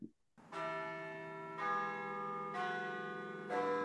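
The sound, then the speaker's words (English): Church bells ring out loudly, with a fresh strike about once a second, each rich, sustained tone overlapping the last so the ringing blends into a continuous peal. No voices are heard. “I didn't really segue into Top of the Hour, but I did leave those bells in”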